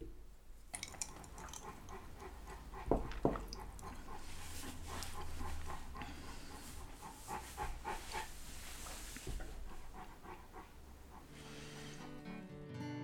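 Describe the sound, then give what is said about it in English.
A female dog snores steadily, with rhythmic, raspy breaths and snuffles repeating for several seconds, a couple of sharper snorts standing out, and no one talking. “So in memorial, here's her snoring one last time.”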